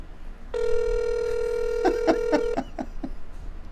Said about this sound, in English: Oh, just hang on. Hear the phone ringing? Hear that? It's going to ring again. It's still ringing. It's still ringing.